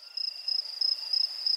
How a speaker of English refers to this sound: Crickets immediately after. Casey, can we have some crickets?